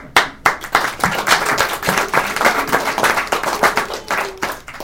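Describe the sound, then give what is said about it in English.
A baby boy clapping hands, a quick, uneven run of sharp slaps repeating for about five seconds at moderate loudness, with no talking over it. “Did the baby hear that? He's clapping.”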